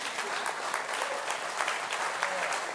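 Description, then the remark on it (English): An audience claps steadily during a sermon about the resurrection, a dense, continuous patter of many hands at an even level throughout, with no voices rising above it. “And if you're going to clap, clap.”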